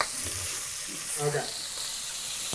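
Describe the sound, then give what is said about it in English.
Chicken fries in hot oil in a pan on high heat as more oil is poured in, a steady, bright crackling hiss that runs throughout, with a brief faint voice rising under it partway through. “We got to add a little more oil.”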